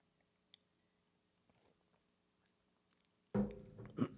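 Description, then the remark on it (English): Near silence with a faint tick, then a loud slurping sip of hot tea near the end, wet and noisy right at the mouth, lasting about a second. “Have another sip of tea because this is driving me wild with my throat.”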